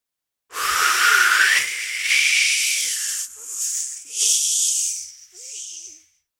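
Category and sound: nature, wind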